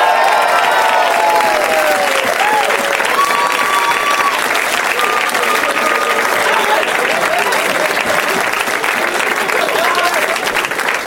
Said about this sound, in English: They're having so much fun backstage together. Or they're just trying to milk the applause.